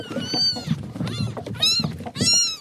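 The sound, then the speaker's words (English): Several high-pitched kitten meows, about four in a row, each a short rising-and-falling cry, fairly loud over a low background rumble. “I'm sure you've seen all the kittens running around this place.”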